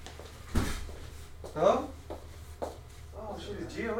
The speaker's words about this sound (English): Someone just opened her door.